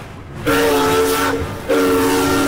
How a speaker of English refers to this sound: Train station. An oncoming train toots to announce its arrival.